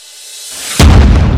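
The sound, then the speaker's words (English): A rising whoosh swells for under a second, then bursts into a loud, deep blast of roaring azure flame exploding outwards, rumbling on with heavy low-end energy. No voices. “His sapphire form slammed into the creature, causing gouts of azure flame to explode outwards, rippling in slashes of azure light.”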